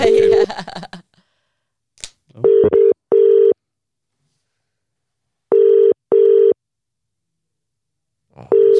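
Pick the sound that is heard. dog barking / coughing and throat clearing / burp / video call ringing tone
video call ringing tone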